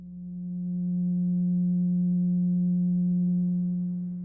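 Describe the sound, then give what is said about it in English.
A steady, low pure tone hums alone for about four seconds, swelling in gently at the start and tapering slightly at the end, with no voices or other sounds. “First, let's listen to what the 180 total degrees contained in a triangle sound like.”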